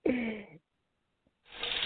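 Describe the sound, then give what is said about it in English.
A shower's running water hisses in two short bursts separated by a brief silence, a steady spray of noise that starts and stops abruptly. “Let's put you in the shower.”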